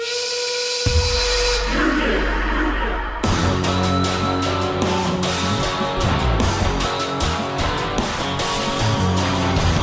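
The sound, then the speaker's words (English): A shrill, sustained steam whistle with a hissing rush blows for about three seconds, opening the theme song of the wrestling group the Union (Mankind, Big Show, Ken Shamrock and Test), then a loud, driving rock theme crashes in with pounding drums and heavy guitars. “I'm not saying it's a great theme or even a good one, but I want you to keep in mind the opening of that song with the steam whistle and the group vocal, Union.”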